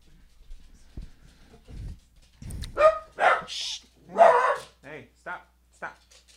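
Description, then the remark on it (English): A dog barks repeatedly, a quick run of sharp, loud barks following a few soft thumps and shuffling noises. “Go not be a dog, all right?”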